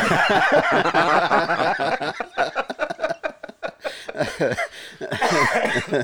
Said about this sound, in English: I should have had access to the mute button when I cough, but I didn't.